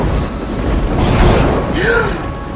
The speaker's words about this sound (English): He was just struck by lightning. Holy shit, he's smoking.